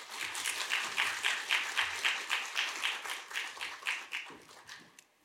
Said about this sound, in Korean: 나오실 때 한번 우리 박수로 환영하겠습니다.